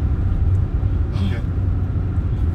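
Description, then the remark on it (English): A steady low engine rumble fills the interior of a moving car, constant, with a brief faint higher whine rising midway through. “Slow down a little bit.”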